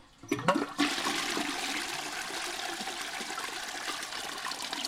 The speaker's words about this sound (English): What's the last thing on your mind when you flush the toilet every day?